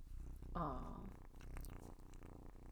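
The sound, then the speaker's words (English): A kitten purrs loudly in a low, steady rumble, with a brief higher-pitched mew-like cry near the start rising above the continuous vibrating drone. “But now she wants to purr.”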